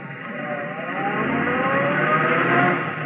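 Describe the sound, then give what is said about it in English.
A cab's engine revs and pulls away, its steady rumble swelling slightly louder over a few seconds, with no voices. “She used a cab.”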